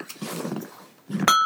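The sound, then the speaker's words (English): A single bright bell ding strikes near the end and rings on with a clear, sustained metallic tone, following a stretch of soft rustling and shuffling noise. “What was that? Was that the bell?”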